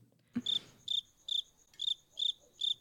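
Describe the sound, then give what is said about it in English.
A crickets sound effect, played to fill a silence: crickets chirp in a steady rhythm, six bright trilling bursts evenly spaced, clear against a quiet background, with a brief soft thump at the start. “Gabe, can we get some like crickets there or something? Perfect.”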